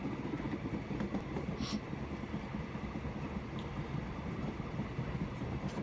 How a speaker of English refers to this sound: It's about this time that the train breaks through.